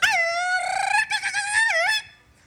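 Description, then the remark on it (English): A Mexican grito: one loud, high-pitched yell held for about two seconds, warbling and trilling with quick pitch wobbles and a dip near the end, with no other voices. “Can you try the grito for me?”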